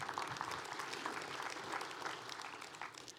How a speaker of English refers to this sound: Praise the Lord. You can clap.